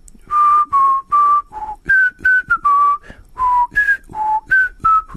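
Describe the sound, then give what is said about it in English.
A person whistles the melody of the New Zealand national anthem, God Defend New Zealand: a slow, stately tune of about a dozen clear held notes rising and falling in the mid-high range, each separated by brief breaths, with no talking over it. “So tomorrow, 8:05 Irish time, the melody of the New Zealand national anthem will ring around Eden Park.”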